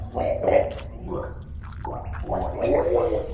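Wet, bubbling gargling in uneven bursts as a man chokes out his rattling last breaths while a creature tears apart the insides of his throat, with short gaps between strained gurgles.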